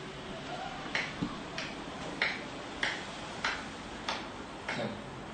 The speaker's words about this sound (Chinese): 咁而家呢個就係普通拍手掌嘅嘢，咁完全冇咩。但係呢個俾大家聽完咧，就要俾佢做個對照啊。